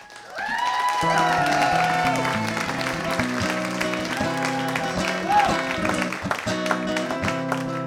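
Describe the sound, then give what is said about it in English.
A large crowd cheers and claps loudly and continuously, with whoops and shrill whistles rising above a dense roar of many voices for several seconds. “What a big crowd.”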